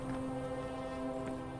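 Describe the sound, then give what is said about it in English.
A train on railroad tracks in Kashmir Gardens, heard loud as a steady, droning rumble with a sustained tonal hum running through it and no voices. “The railroad tracks.”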